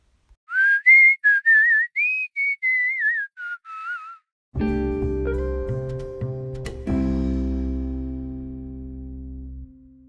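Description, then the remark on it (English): A person whistles a bright, bouncy tune in a string of short, separate notes with a slight warble, clear, before a sustained instrumental chord takes over. “And he whistled all the way home.”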